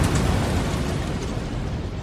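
A loud explosion of hydrogen gas, such as given off by a lead-acid battery charged too quickly, roars with a deep, rumbling low end and a steady wash of noise that carries on for a couple of seconds without dying away. No one speaks.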